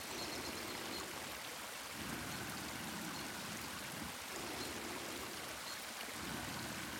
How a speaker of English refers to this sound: A clear pool of fresh water sits undisturbed, hidden by the dense trunks and limbs of Douglas fir and Pacific yew trees. It's surrounded by a rocky overhang where a small waterfall streams down onto slabs of limestone.